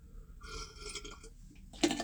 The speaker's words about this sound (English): Let me just take a sip of liquid. I'm in the sauna right now doing a little bit of saunaing.